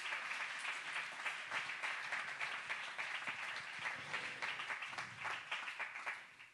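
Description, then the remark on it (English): A church audience claps their hands in a steady, dense burst of applause lasting several seconds, the sound fairly even throughout and fading slightly at the end, with no talking over it. “Somebody clap their hands for a moment.”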